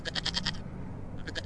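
A goat named Rudolph bleats twice in quick succession, each call a rapid, pulsing vibrato, fairly loud, with a brief pause between over low background rumble, while being led to a car.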